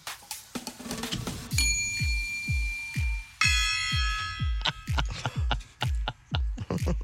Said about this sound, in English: I asked for the bell. I shouldn't get that.